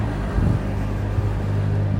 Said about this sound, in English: But the thing that really strikes you when you walk in, here comes a guy in a little dumper truck.